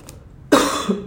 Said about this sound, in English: Oh, there's the not COVID cough. I gotta drink some water. Bear with me, guys.